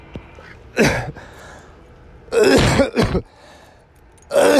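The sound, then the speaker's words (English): A person coughs and clears their throat in front of a camera in several harsh bursts, one short hack followed by a longer double cough, then another starting at the end, with quiet pauses between. “I thought I'd cough in front of the camera a little bit.”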